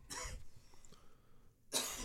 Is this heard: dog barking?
no